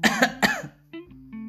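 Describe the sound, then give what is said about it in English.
A person imitates Sid's nasty, hacking cough: three harsh bursts in quick succession, fairly loud, followed by a quieter, steady droning tone. “In fact, life in Aristotle Street was just about perfect for Sid, until one cold, damp day he caught a nasty cough.”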